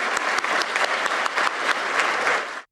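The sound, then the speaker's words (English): A crowd claps for the judges, mentors and supporters of an event, in steady, sustained applause, dense and fairly loud, with many overlapping hand claps that hold level for a few seconds before cutting off abruptly. “I'd like to just ask one more big round of applause to all of our judges, mentors, and supporters.”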